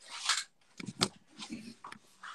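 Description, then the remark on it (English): Crinkling and rustling of a thin plastic diffusion film being handled, a few sharp crackles and rubbing sounds in quick succession, with no one talking. “You can also get frost glass. This is just something that I use. It's a plastic film.”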